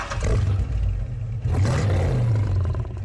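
A deep, rumbling car engine blended with a growling animal roar, loud and sustained for a few seconds, with a surge partway through like the engine revving.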